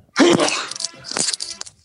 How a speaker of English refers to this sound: Yeah. That's a man sneeze right there.